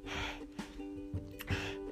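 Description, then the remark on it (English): A voice imitates gasping for air: a series of ragged, breathy inhales and exhales, moderately loud, repeating unevenly over a couple of seconds with no words. “Mikey was gasping for air.”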